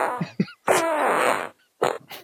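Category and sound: human body sound, fart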